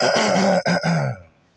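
A loud throat clearing, a drawn-out raspy rumble broken by two quick catches before it trails off into quiet. No one speaks.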